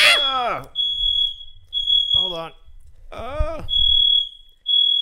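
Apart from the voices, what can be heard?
fire alarm beeping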